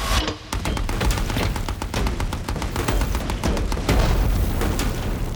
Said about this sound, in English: There's another boom and another. The percussive beat of shellfire is joined by the deathly rattle of machine guns. It's an ambush.